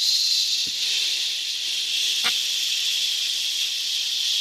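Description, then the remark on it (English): A voice imitates a toilet bowl refilling with a steady, breathy hiss that holds unbroken for several seconds, interrupted only by two faint, brief clicks imitating the float valve clicking into place in the tank. “As the bowl refills.”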